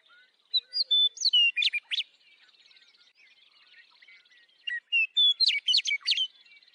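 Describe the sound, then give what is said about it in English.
A hermit thrush sings in the shade of mature conifers high in the Sierra Nevada of Central California: two separate phrases, each opening on a clear whistled note before spiraling into quick, fluty, echoing trills, with a quiet pause between them and no voices. “While hiking there recently with friends, we came across the hauntingly beautiful phrasings of a hermit thrush singing in the shade of some mature conifers.”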